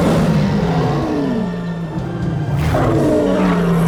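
A lion roars loudly, a deep, rumbling, sustained call that wavers and falls in pitch, then surges again near the end. No one speaks.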